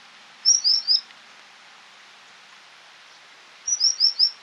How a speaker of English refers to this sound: Over in Europe, we have the common sandpiper, Actitis hypolicus. This species breeds all across Eurasia and spends the winter in Africa, Southern Asia, and Australia. When flushed, the common sandpiper makes a sound like this.